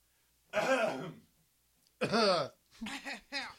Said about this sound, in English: Don't cough without covering.